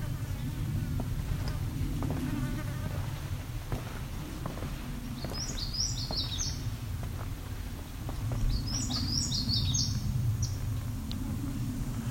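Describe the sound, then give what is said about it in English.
An indigo bunting sings a short variation on its song, two short phrases of high, paired notes a few seconds apart, over a steady low rumble and insect-like background drone. “Kind of short variation on indigo bunting song.”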